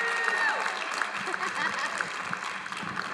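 round of applause

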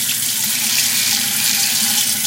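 tap water running

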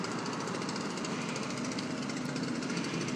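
leaf blower engine running

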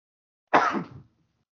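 sneeze

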